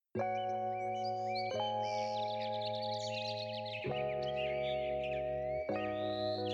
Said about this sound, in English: …, opens with the sound of birds. A new day is dawning, all day, all night.